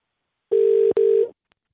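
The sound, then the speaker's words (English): A telephone line tone on an outgoing call: two steady, loud electronic pulses in quick succession, split by a brief click, with no one speaking. “Okay, so let's put in the phone call, guys.”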